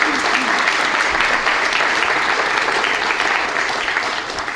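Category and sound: crowd, audience round of applause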